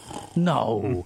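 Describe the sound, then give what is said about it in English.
A single drawn-out voiced noise, fairly loud, with a buzzy, slightly sliding tone lasting under a second, as a person vocally imitates a snore. “Can you make the snoring boring noise again?”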